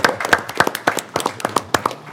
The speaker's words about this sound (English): Okay. Y'all, let's give a hand of applause.